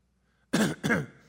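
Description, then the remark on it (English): Two harsh, rasping coughs in quick succession, loud, after a brief silence, with no talking. “I mean, have you ever walked into a doctor's office coughing?”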